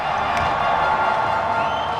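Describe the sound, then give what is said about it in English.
A crowd at a table tennis championship match on a sunny day cheers and clamors, many voices at once at a fairly loud, even level throughout, with no single voice standing out. “The sun is out, the crowd is wild, it's a perfect day for table tennis, or what we recreational players call ping pong.”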